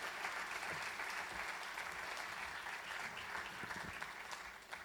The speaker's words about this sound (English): But I want you to give them a huge round of applause. Fantastic. Thank you, guys.